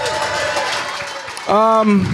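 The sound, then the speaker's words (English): Audience applause from fans giving themselves a round of applause for helping the show Nightcap reach a milestone: a steady wash of many hands clapping, with a loud voice rising over it about two-thirds of the way through. “So when it comes to us doing Nightcap, I want y'all to give yourself a round of applause, too, for helping us reach this milestone, please.”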